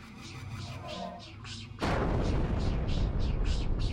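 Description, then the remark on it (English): A quieter tonal backdrop is cut off midway by a sudden, loud explosion of psychic energy on a battlefield, which gives way to a sustained roaring rumble pulsing with repeated blasts, like heavy fire. “An explosion of psychic energy ringing out from the battlefield here.”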